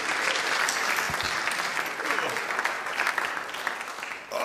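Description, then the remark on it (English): Sustained applause from a large audience at Springfest for a speaker, a dense, steady wash of clapping that holds at a loud level throughout, with faint voices mixed into the crowd noise. “So let's give a huge round of applause for the”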